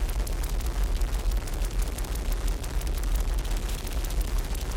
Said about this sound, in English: But what's doubly interesting to me, and what's really the key for my love for noise music, is the way that out of that field of static in this track in particular, you suddenly start to get a beating pulse.